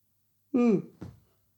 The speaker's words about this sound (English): And you've caught me in the middle of a yawn. I have, yeah. Long week so far there. Again yawning.